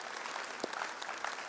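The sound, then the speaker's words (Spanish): A crowd applauding for the Lord, a dense and steady wash of many hands clapping at once, fairly quiet overall with a few sharper claps standing out from the rest. “Está conmigo y den un aplauso al Señor que se lo merece.”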